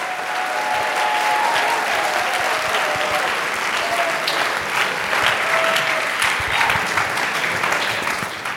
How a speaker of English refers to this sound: Come on, now let's give God a hand clap of praise as we seal this. Come on. Praise him.